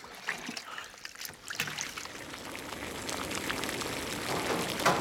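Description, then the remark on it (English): Several small splashes and plops as peeled plantain chunks, cut on the diagonal into about half-inch pieces, are dropped one after another into a pot of salted water, with a steady watery background and no talking. “after they've been peeled, we're gonna give them a nice cut on the diagonal, on the angle, on the bias, so we get like a longer and a more even cook.”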